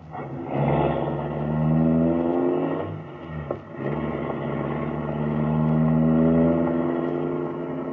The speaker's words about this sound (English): The car motor is idling.